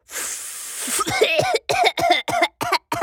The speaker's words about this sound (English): Suddenly, Hasty Rhino was out of breath and started coughing.